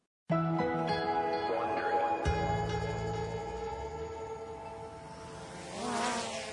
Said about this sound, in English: A small drone is flying over a sunny Brooklyn street.